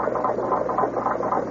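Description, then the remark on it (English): A clock mechanism whirs steadily before striking twelve o'clock, a dense mechanical grinding of gears with a quick, even rhythmic pulsing throughout, moderately loud with no voices. “Inexorably, as we concentrated on the chessboard, all of the clocks ticked on towards 12 o'clock.”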